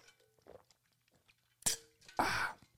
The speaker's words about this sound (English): I take a big swig of my half-gallon jug of water.